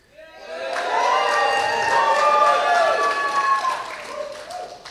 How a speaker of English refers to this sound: The first thing I saw in the film was a whole crowd of people. And they were all cheering, so let's cheer.